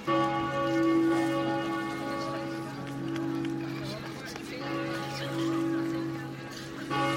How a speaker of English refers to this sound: Well, later on, a more pleasing sound permeates throughout the city, the bells of Fulda Cathedral.